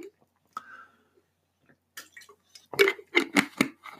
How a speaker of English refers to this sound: Sorry, got to drink water. Hydration means victory.